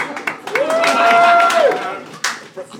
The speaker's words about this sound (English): One dude applauding, the most sarcastic applause I've ever heard. I think, but also it started as normal applause, then he realised no one else was joining him, so he's like, ah, actually, I didn't enjoy it. Style it out.